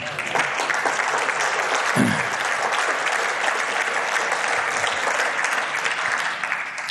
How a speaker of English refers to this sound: I would have thought that would have been worth a bit of applause.